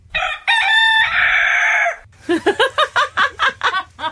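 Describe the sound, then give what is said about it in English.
A loud rooster crows once, a long harmonic call, then breaks into a rapid series of about eight choppy, rattling pulses that sound strained and ragged. “I'm worried about the last section of that crow. It sounds like it goes into death rattles.”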